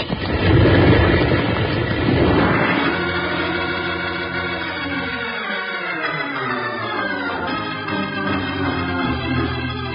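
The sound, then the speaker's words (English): A loud, steady roaring rumble of a big rock blasted loose with blasting powder tumbling down, heaviest over the first few seconds, then settling into a sustained droning roar with tonal overtones. No one speaks. “If they blasted it loose, it's falling down on us.”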